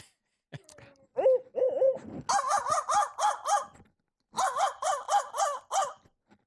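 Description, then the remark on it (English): A person imitates a crow call by mouth, used as a turkey-hunting call to make turkeys gobble, starting with a few short wavering notes, then two loud bursts of rapid, harsh caws, about five or six each, separated by a brief pause. “Maybe I'll try a crow call.”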